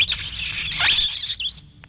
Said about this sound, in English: What a crap buzzer.